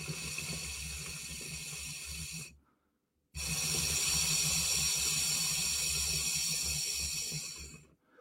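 Steady water bubbling in a Kangerm Innovator electronic water pipe, fairly loud, in two long bursts: one lasting about two and a half seconds, then a brief pause, then a longer gurgling stretch. No voices.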